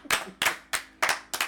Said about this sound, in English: Everybody, round of applause for